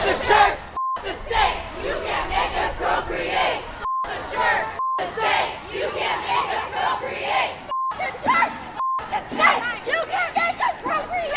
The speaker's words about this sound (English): That might have been a little hard to hear as the land whales were chanting, but what they were saying was, beep the church, beep the state, you can't make us procreate.